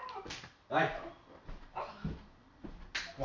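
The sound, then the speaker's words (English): A dog whimpers and lets out several short, high-pitched yips in quick bursts, with people talking around it. “Fucking dog.”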